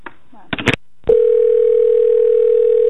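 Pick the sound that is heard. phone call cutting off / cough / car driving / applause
phone call cutting off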